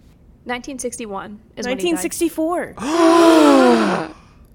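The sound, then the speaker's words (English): Two people gasp loudly at the same moment, a long breathy, voiced intake lasting about a second, right after a burst of short excited vocal sounds, clear. “The simultaneous gasping.”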